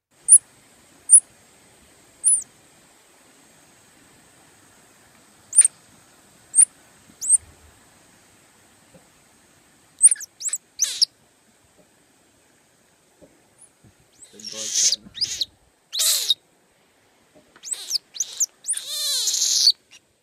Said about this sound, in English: All right, here's the answer. This is Miley. She's a monkey, a type called a Saki. She looks kind of like a grumpy baby who just woke up with crazy bedhead. Miley was orphaned and kept as a pet in Peru.